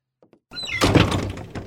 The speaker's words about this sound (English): Shut the door, Chester.